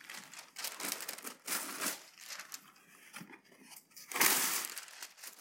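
Wax paper crinkles and rustles in several irregular bursts as it is laid along the edge of a plate before frosting a cake, with a louder crumpling flurry near the end and quieter handling sounds in between; no one speaks.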